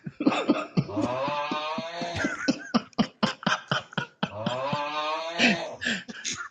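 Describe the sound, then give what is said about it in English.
A person fakes a snore, pretending to be asleep in someone's bed: two long, loud, drawn-out groaning snores, each breaking into a string of rapid sputtering, snorting bursts. “Listen to this fake ass snore.”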